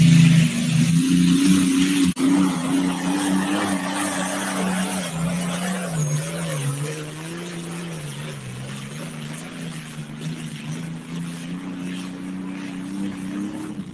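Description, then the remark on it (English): A loud, sustained engine of a pulling tractor with a newly built chassis roars steadily throughout as it pulls down the track, its pitch dipping and climbing slightly as it strains under heavy load, with no voices over it. “built an old new chassis for this tractor, and it's working great.”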